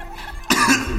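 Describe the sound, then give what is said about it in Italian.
A single sharp cough bursts out about halfway through, fairly loud, followed by a rough, breathy tail. No one speaks. “Si te che tossisce, basta.”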